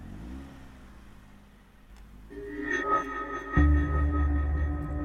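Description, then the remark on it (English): A car engine idles low, then revs up in two surges, its drone growing louder and higher as the car pulls away carrying three people. No one speaks. “loaded us into her car and the three of us set out in silence as the world burned.”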